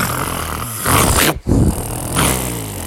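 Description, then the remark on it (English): Deep, rough growling from a band of jungle cats (a cougar, a puma, a mountain lion, a tiger, a lion, a leopard and a jaguar) rumbles on without pause, swelling loudly twice and broken by one sharp, brief silence in the middle. No one speaks. “And all the cats were growling at them.”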